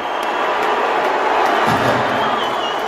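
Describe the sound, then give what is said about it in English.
A large audience at a Dave Chappelle show in San Francisco roars with a mix of cheering and booing as Elon is brought on stage, a dense, sustained wash of crowd noise filling the whole stretch at steady loudness. “Cheers and boos, I see.”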